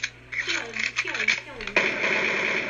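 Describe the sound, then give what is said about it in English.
A voice imitates gunshots with a quick run of sharp, bursty mouth sounds, then ends in a loud, sustained hissing rush. “That was my gunshot noises.”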